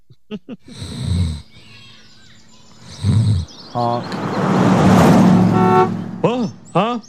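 car horn honking

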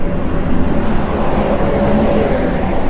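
bus driving past

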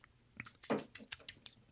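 sipping red wine

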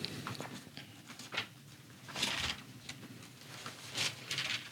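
bible pages turning

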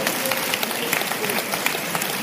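audience clapping hands

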